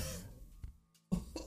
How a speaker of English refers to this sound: Sorry, I get a little cough and I'm finishing my 40.